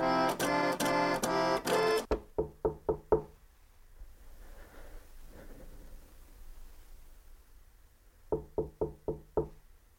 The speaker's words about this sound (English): He grows nervous and knocks on Coco's door.